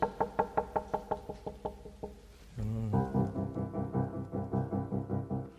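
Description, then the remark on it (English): Piano plays a steady knocking figure of repeated quaver chords on the tonic, C major, for about two seconds, then shifts into a fuller, sustained passage with a pulsing rhythm underneath. No voices. “He starts this time on the tonic, C major, but we have a rhythmic motive, this knocking, repeated quavers.”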